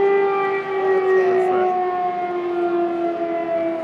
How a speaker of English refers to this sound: As we prepare to interview a volunteer medic from Sweden, the air raid sirens start up again.